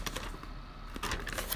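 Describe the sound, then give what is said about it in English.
Paper pages being flipped, a few quick crisp rustles spread across a short moment, with no one speaking. “So, I have about maybe, you're going to hear the pages turn.”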